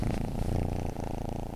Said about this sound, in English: This is my cat, Ty Lee. She likes to purr a lot.